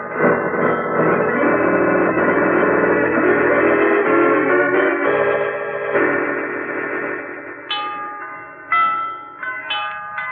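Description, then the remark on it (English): Bells ring in a bell tower in a dense, overlapping peal, their metallic tones sustaining and blending, then a few sharper, higher strikes ring out separately toward the end. No one speaks. “Who could be ringing those bells? Suppose we hurry to the bell tower and see for ourselves, your lordship.”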